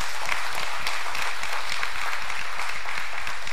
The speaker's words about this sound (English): May 14th, 1948, Israel once again becomes a sovereign nation. We should clap for that one.